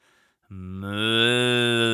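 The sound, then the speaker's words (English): A person does a loud, sustained moo imitating a cow, starting abruptly after a brief quiet pause and holding steady, swelling slightly as it continues. “Really, you want me to moo like a cow?”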